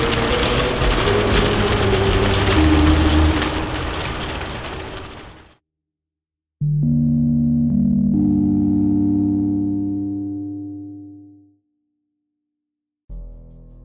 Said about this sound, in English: Han, start up the drill.